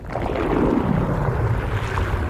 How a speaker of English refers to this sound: And my personal favorite, there are some geysers that have little pools, and sometimes they'll drain very suddenly.